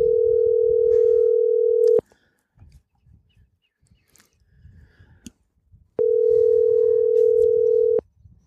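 A phone ringback tone sounds twice as a call is placed to a friend, each a loud, steady two-second hum separated by a pause of about four seconds, with faint muffled background rustling in between.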